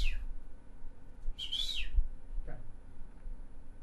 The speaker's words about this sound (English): and I have a little whistle. Can I ask you to turn the sound off quickly? All I have to do is this.